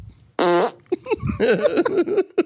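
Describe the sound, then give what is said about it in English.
A short, loud, tonal fart toot rips out, followed by a burst of excited chatter and laughter-like voices. “That was a classic toot noise.”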